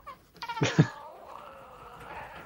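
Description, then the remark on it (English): A drawn-out, wavering cat yowl, apparently voiced by a person imitating a cat, rising sharply then trailing off into a longer, quieter moan. It is heard alone. “Interesting choice of cat sounds, by the way.”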